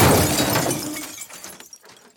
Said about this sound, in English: The fact that Joe just telepathically picked up the poker table and threw it through a plate glass window proves my theory.